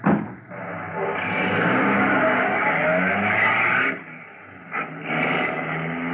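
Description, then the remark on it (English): A taxi's engine catches with a sharp start and runs loud for several seconds, eases off briefly, then revs up again as the car pulls away. “Get into the cab and start it.”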